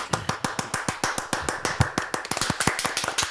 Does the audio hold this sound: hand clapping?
yes